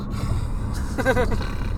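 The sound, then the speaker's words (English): A person imitates a snore while faking sleep: one short, throaty snorting breath near the middle, over a steady low background rumble. “Like, you had to do a snore that's not enough to be fake, but just enough to sound like you're actually snoring.”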